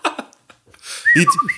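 A person whistles a short, sliding melody lasting well under a second, preceded by a few breathy bursts and a brief pause, moderately loud.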